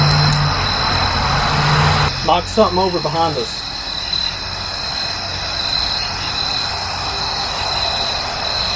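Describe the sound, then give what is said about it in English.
A steady wash of traffic noise from cars on a road by a cemetery, loudest at the start, with a person briefly talking over it and a thin insect drone high above. “It's kind of hard to hear anything with all these cars back here.”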